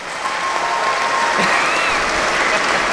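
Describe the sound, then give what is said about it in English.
A steady wash of audience applause, many hands clapping densely and evenly for the full three seconds, with a faint thin whistle-like tone drifting through the noise. “You know, it's so nice when the audience just stops applauding so that I can continue talking.”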